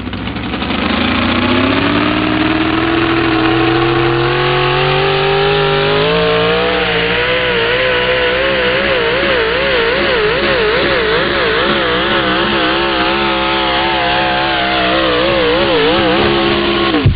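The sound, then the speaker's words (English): A loud pulling truck engine roars continuously as the truck runs down the pull track at a truck-pulling competition, bouncing from the start, its pitch climbing steadily and then wavering and surging near the end as it strains under load, dominant with no voices. “Fighting some bouncing issues right from the get-go, and even at the end, Thumper going to come out on top.”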